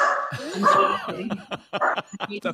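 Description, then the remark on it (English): A dog barks and yips in a rapid, uneven string of short, high-pitched bursts, fairly loud, with a whiny edge between barks. “It's a lot of work. Don't get a dog.”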